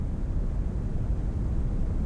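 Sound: brown noise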